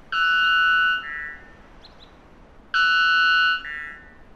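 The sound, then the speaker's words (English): A bird sings two loud, buzzy, harmonic-rich calls about two seconds apart, each a steady held tone that steps down to a lower pitch before ending, with no other sounds. “We've had to attenuate the sound of the bird because of the dynamic range limitations of radio.”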